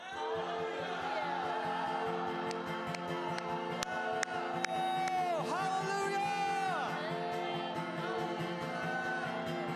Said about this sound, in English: So ready on three, let's just yell hallelujah. One, two, three.